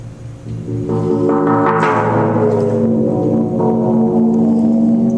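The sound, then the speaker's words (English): A giant gong being lowered by a man into a giant body of water: a loud, sustained metallic drone with rich overtones that waver and bend downward in pitch, a deep, eerie groan with no voices. “All right, here we have a giant gong sitting above a giant thing of water. The man is lowering it.”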